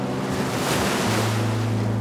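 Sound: ocean waves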